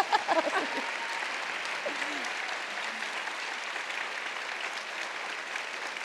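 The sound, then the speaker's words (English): A room full of people claps steadily for a panel at an evening event, a dense, sustained wash of applause that holds at an even level for several seconds, with a few brief voices poking through near the start. “Well, before we do get to questions, a big round of applause for this fantastic panel.”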